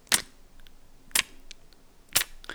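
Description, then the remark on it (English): Slow, steady ticking of a grandfather clock: three sharp, crisp ticks spaced about a second apart, with fainter softer clicks in between and no voices. “It chimed at every hour, but it ticked.”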